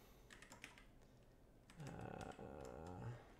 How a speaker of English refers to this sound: And I'm typing in my time code.